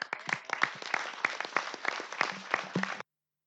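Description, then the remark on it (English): An audience applauding a panel, steady dense clapping with a few sharper individual claps standing out, continuing for about three seconds before stopping abruptly. “Can we give our panel another round of applause?”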